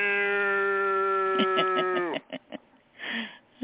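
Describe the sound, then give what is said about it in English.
A person imitates a cat's meow with one long, drawn-out, steady-pitched vocal tone that slides downward at the end, followed by a few short breathy sounds. “Meow, Lou. That's a cat.”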